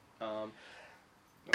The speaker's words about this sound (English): Sorry, guys, I'm coughing because I'm sick.